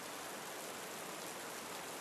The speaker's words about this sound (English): She points to the western horizon. A storm is building. A cool wind is blowing their direction. Much needed rain is on the way.